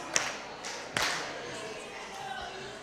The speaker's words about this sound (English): If you hear my voice, clap two times.